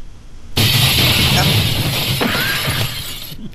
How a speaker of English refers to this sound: What's the broken window? Glass.